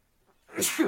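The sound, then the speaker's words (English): A single sneeze bursts out, a short sharp breathy explosion with a brief intake just before it, loud against an otherwise quiet background. “Bless you. Sorry.”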